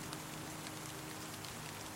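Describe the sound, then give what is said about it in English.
Steady, heavy rain hisses across the whole two seconds, a dense, even patter with a faint low rumble beneath it and no voices: rain in a storm at sea, with wind and thunder, outside a ship's porthole. “It's more than the rain and the wind and the thunder.”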